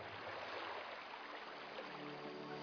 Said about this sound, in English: And you hear waves breaking on the shore.